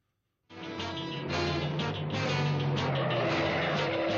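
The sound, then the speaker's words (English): A little red car screeches to a stop in front of a building, its tires letting out a loud, sustained squeal that starts abruptly and holds for several seconds, with no voices over it. “Just that car pulling up the stop and should have gave away to you.”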